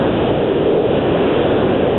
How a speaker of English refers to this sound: Can you turn your hairdryer off? Just kidding. Okay. Very loud. I'm just driving down the road. Yeah, we can hear the engine, so go ahead.